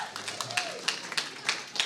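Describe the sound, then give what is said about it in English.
A church crowd claps and cheers while looking at the people next to them, an uneven patter of overlapping sharp hand claps, with a few scattered voices calling out underneath. The sound is fairly soft overall. “And why don't you just look at the person next to you, just look in their eyes and clap and cheer.”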